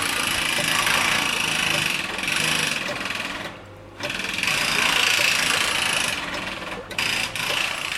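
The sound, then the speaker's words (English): A jackhammer drills down into three slots to widen them, with a steady, loud, buzzing rattle, cutting out briefly twice before starting up again, filling the whole eight seconds. “After I have done this, I get my jackhammer and I drill down into the three slots to open the up a bit.”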